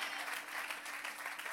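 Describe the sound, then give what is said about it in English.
An audience claps together in a dense, steady burst of applause, many hands overlapping into a continuous bright patter with no pauses, sustained at an even level throughout. “Come on, if you're going to give him a clap, give him a good hand clap today.”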